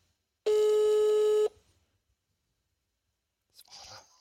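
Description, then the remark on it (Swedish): A single loud, steady electronic telephone ringback tone, while phoning a Thai food restaurant, lasts about one second, followed by quiet and then a brief rustling, crackly noise near the end. “Ja, jag ringer nu så ser vi om vi...”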